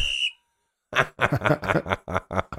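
A person gives a short, sharp, high whistle at the very start, cut off quickly, followed by a brief silence and then a run of rhythmic vocal sounds.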